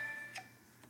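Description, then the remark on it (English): A short, faint electronic phone tone, a steady high beep that fades within a fraction of a second, followed by two soft ticking clicks over low background hum. “Sorry about that, y'all. That was my phone.”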